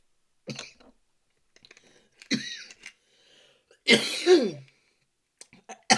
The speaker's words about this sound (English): If you can't tell, I cough a lot. I don't like coughing, so I be taking little punk hits because I do not like to cough.